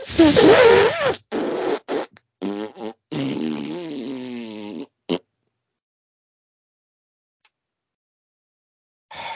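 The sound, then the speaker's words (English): A run of loud, sputtering fart sounds in quick succession, some long and wavering in pitch, followed by several seconds of silence and a brief noise at the very end. “May the Lord fill your sphincter with righteous wind.”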